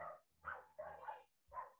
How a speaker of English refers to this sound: There's a dog barking. Bear with me. Sounded like some introduction music and then a barking dog.